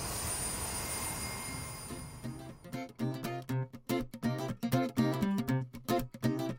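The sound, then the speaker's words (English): A train's steady rumbling hiss slows and dies away over the first two seconds as the train stops, then gives way to a run of choppy, tonal bursts. “and then the train stops, as we probably have gotten to the museum by now.”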